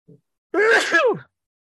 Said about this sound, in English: and I'm going to sneeze here in a second. Excuse me. It's all good.